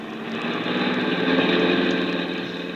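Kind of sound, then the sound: vehicle, car engine driving fast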